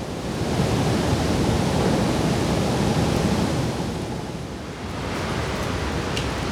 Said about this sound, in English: I wasn't expecting the falls to be as active as they usually are in the summer. I thought it would be a lot quieter. But the roaring sounds of the water crashing through the floodgates and into the falls is still just as loud as it is in the summer.